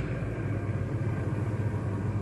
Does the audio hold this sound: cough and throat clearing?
no